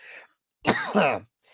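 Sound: coughing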